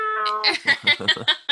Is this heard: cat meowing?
yes